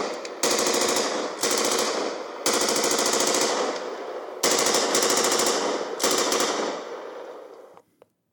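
Loud machine gun fire in several long rapid-fire bursts, one after another with barely a pause, trailing off into a short echoing decay. No one speaks.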